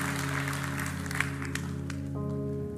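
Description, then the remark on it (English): An audience applauds steadily in a dense wash of clapping, while sustained organ-like chords hold underneath and shift to a new chord near the end. “And that's something that we should be applauding for, because that means that God is still on the throne and he gives redemption stories.”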